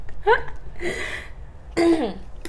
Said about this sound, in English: I have to cough too. I did. I coughed already. Just an outtakes of all of our coughs. ASMR coughing.